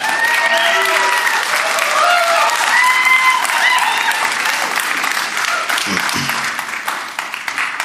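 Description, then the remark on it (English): A large crowd claps steadily in dense, sustained applause for a guest speaker before he speaks, with a few cheers and whoops rising above it before the clapping begins to thin out near the end. “would you give him a huge round of applause?”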